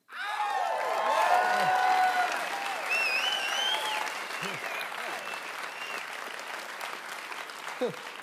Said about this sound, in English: Where were you guys at the game? Could use those 38 claps.